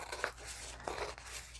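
Scissors cutting paper: a few crisp, papery snips and crunches in an uneven rhythm, fairly quiet, with no one talking.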